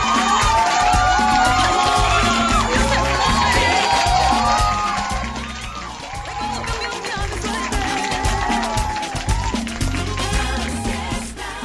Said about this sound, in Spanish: Pero muy buena tu respuesta, ¿eh? Un aplauso.